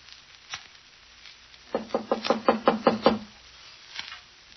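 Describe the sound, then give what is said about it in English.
A quick run of about eight firm knocks on a door, evenly spaced, with a few faint isolated taps before and after. “She doesn't answer, Ellen. She might be sleeping. Open the door.”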